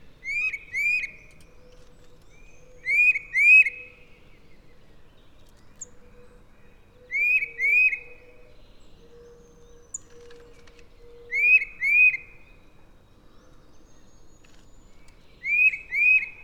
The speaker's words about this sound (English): And then, another common neighborhood bird. A tufted titmouse.